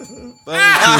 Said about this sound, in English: hit you with the bell.